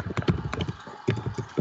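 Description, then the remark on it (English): A quick run of sharp clicking and clanging taps, irregular and fairly loud, with a brief pause midway, much like someone typing hard on a keyboard. No voices are heard. “What is all that clicking and clanging noises? What the fuck is that? Somebody typing a bunch?”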